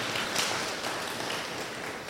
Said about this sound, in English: Can I hear a hand clap to the Lord? Hallelujah.